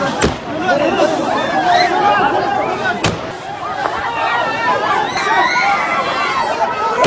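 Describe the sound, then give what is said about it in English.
At the airport in Kabul, Afghanistan, a panicked crowd shouts and screams continuously over dense babble as people run for their lives, while two sharp, loud gunshots burst out, one at the start and one midway through. “This is the scene at the airport as gunshots were heard and people started running for their lives.”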